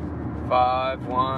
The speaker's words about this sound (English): I just had to hit the brakes for the po-po.